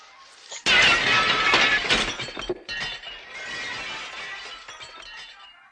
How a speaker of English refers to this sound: So he just threw a duck through the window. For everyone that's wondering what the hell that was, he threw a duck through the fucking window.